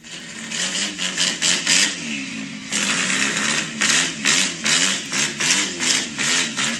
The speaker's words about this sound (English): This is what I want my truck to sound like, alright? Don't put it too close.